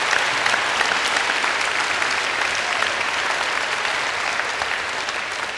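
A large audience claps steadily and loudly for several seconds, a dense, even wash of applause that fades only slightly toward the end, with no voices standing out.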